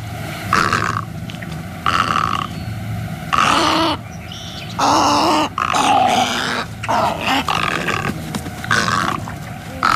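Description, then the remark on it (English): Snowy egret calls: a series of harsh, guttural croaks and gargling squawks in rapid bursts, loud, with no one speaking. “Oh, and here's what the snowy egret sounds like.”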